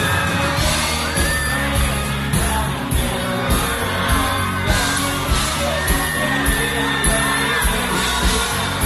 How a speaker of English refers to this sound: and then the crowd erupts like that, that's awesome. It's super cute.